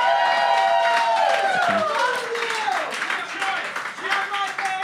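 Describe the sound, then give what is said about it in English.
A debate audience cheers loudly and steadily for about five seconds to agree with the judge's decision, a dense wash of many voices shouting and whooping, with some clapping mixed in and pitched yells rising and falling. “If you agree with my decision, I want you guys to cheer. Give that a shot right now.”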